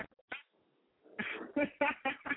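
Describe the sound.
A person imitates a cat's meow, with a couple of short yelps at first, then a quick run of five fairly loud meows in a bouncy rhythm.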